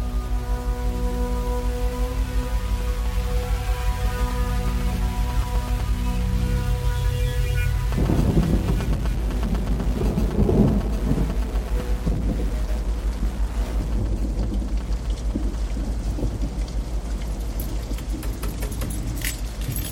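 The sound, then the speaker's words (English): A low, steady humming drone gives way to a loud, dense wash of heavy rain with low rumbles of thunder rolling underneath, filling the space continuously with no voices. “The rain getting heavy”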